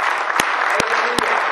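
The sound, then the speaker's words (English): A church audience claps for the Lord, Jesus Christ, in a dense, continuous wash of applause, with a few sharper, louder claps standing out at a steady rhythm roughly every 0.4 seconds. No one speaks over it. “Don't give me that lazy clap. Clap for Jesus Christ.”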